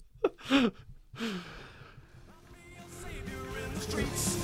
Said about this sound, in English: Heavy breathing.